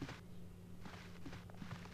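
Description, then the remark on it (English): Soft, muffled footsteps on blue carpeting at the top of a stairwell, about five steps in an uneven walking rhythm, heard over a steady low hum with no talking. “From the sound of the floor, it sounds like blue carpeting.”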